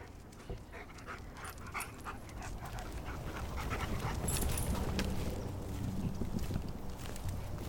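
A search dog, one of two brought to search Lake Fisher in Orlando, Florida, pants steadily, with shuffling, rustling movement and faint paw-like steps throughout, growing slightly louder toward the end. No one speaks.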